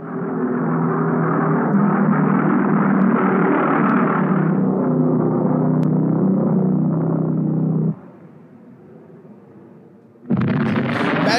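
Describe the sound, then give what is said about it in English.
A V1 flying bomb, used for terror bombing against London, roars with its pulse-jet engine in a loud, rough, throbbing buzz for about eight seconds, then the engine abruptly cuts out from fuel starvation into a brief hush before a sudden loud blast as the warhead hits the ground and detonates. “But when the V1 reached its target, the engine would cut out due to fuel starvation.”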